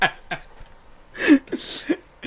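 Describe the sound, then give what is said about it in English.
A few short, nasal, duck-like quacking bursts spaced irregularly, moderately loud, sounding like a person's honking laugh or vocal imitation rather than an actual bird. “Is there a duck in here? This was... Twat, twat, twat. It sounds like a duck.”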